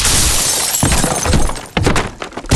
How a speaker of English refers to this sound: Brandon, break the vacuum. That's right. Breaking the vacuum.